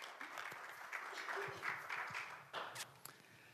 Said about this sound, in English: Would you give them a roaring round of applause